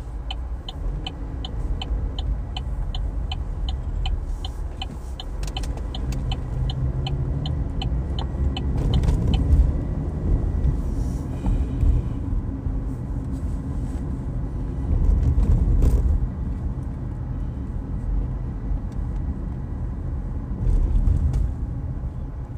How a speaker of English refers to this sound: Turbo coming out of his car.